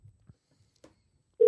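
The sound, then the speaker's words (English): After a near-silent stretch with a few soft clicks and thumps, a loud, steady ringback tone of an outgoing call, placed from a phone connected via Bluetooth to a board, suddenly begins right at the end, heard on its own with no talking. “I can hear it ringing.”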